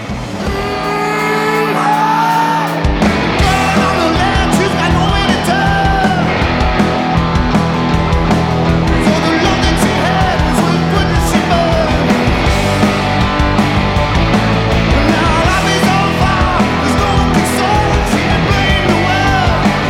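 A loud rock intro opens with a high sliding scream over a held chord, then a heavy bass riff and full distorted band crash in and drive on steadily with no talking.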